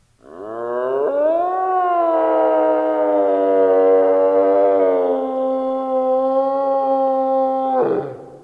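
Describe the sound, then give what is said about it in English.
A deer calls with one long, loud, drawn-out moaning bellow that rises at the start, then holds a steady, rich tone for about seven seconds before cutting off. No one speaks. “That is a deer.”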